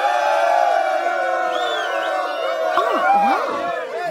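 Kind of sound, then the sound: crowd, applause and cheering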